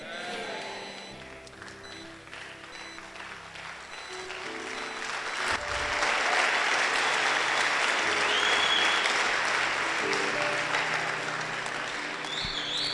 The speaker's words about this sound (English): You see, the hand clap I just heard tells me that you are listening to me.